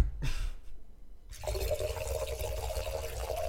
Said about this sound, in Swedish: Fan, jag skulle ha hällt upp glaset när vi började. Ja. Mm. Ska jag göra det? Ska jag hälla lite i? Mm, gör det.